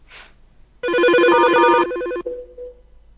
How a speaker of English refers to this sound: Okay, this number here I have, it's an elevator. Like the machine inside an elevator. Yeah. But you have to do like codes, so let me see if I can you guys hear the dial tone?